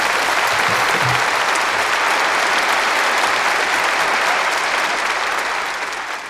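A sustained round of applause from a sizable crowd, dense and steady clapping that stays loud throughout before tapering slightly at the end, with no talking over it.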